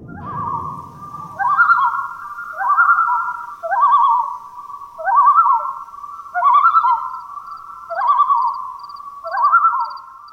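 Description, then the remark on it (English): A common loon's yodel rings out loud, a string of about eight repeated rising, warbling phrases in steady rhythm, with a brief low rumble at the very start and no talking. “the same is true for the lonely yodel of the loon for Canadians”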